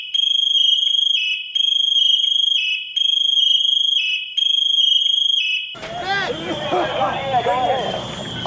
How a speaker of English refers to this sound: The pass device is an alarm that is intended to sound loudly and flash lights after a set duration of non-movement by the wearer.